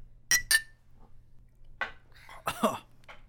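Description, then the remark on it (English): Two quick, bright clinks of glasses touching in a toast, the second one ringing briefly, followed by a few rough coughs and throat-clearing sounds. “I'll drink to that. Cheers to too many white people. Cheers.”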